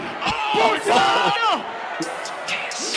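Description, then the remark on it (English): A loud, dense crowd roars and shouts at a live event, rocking left to right, with several excited voices whooping and yelling over the steady cheering throughout. “The whole crowd is rocking left to right.”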